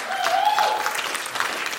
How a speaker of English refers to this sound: Yes, yes, clap for my children.